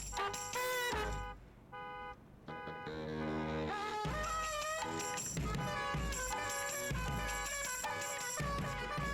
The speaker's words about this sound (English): They just use the car alarm as a baseline? Yes. It's just. It's just the whole time. That it's horn.